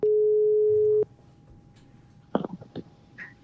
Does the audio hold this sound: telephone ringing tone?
yes